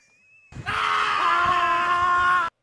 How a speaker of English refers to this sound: No, they are screaming goats.